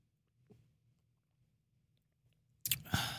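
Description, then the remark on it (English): After nearly three seconds of near silence with a faint click, a loud slurping sip of beer suddenly takes over and runs to the end. “Right, we have to take a sip and then...”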